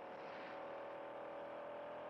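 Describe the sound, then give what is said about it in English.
A car engine roars loudly during a car chase in city streets, holding a steady, droning pitch over a wash of road noise for a couple of seconds, with no voices. “Wants a car chase in the city streets.”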